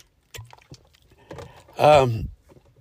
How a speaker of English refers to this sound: So bear with me. I still have my little cold. I'm drinking some water.